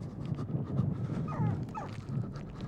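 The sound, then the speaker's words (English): A wild dog whimpers and whines with rising, wavering high cries, mixed with low, muffled barking bursts. It is moderately loud, with no one talking. “I don't like to be cruel, but every now and then you gotta throw some sunflower seeds at a wild dog.”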